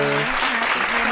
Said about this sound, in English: We wanna give him and Tina, we wanna wish him a happy anniversary Round of applause for those guys. They made it to a year.